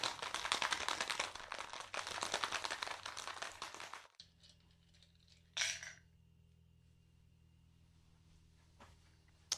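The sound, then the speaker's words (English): Ice rattles hard inside a cocktail shaker as a hot pink juice cocktail is shaken, a fast, dense, clattering burst for about four seconds, then stops abruptly, followed by a low hum and a brief metallic clink as a strainer is put on. “All right, so we've shaken it over ice, and we've put the strainer on, and we've poured it into the Manhattan glass.”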